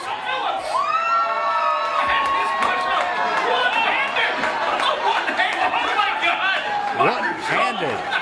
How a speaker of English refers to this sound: In front of a delighted crowd last night.